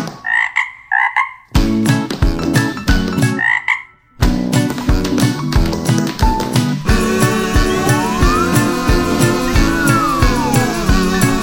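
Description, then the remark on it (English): Quick, rhythmic clicks of little frog-sized tap shoes worn by a singing frog choir patter over a bouncy musical number, with loud croaking frog calls at the start and the beat growing busier as it goes. “Look, honey, they've even got little frog-sized tap shoes on.”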